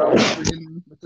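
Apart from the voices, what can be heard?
sneeze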